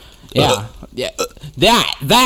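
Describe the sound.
Several loud burps come in quick, uneven succession, throaty voiced bursts with a rising-and-falling tone, separated by brief pauses.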